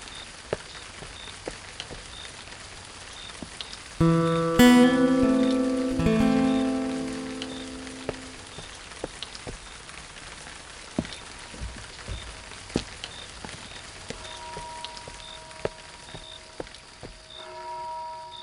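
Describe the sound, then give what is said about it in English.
Steady rain patters with scattered drips close by, a brief droning tone swells and fades in the middle, then the rainfall continues more softly and sparsely. No one speaks. “As the rain began to ease off, and the cobblestone streets gave way to muddy roads, they found themselves at the gates of the old church.”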